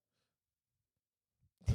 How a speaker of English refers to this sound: That was Rufus snoring. Yeah, Rufus agreeing with me. No, he went to sleep. He's not interested at all.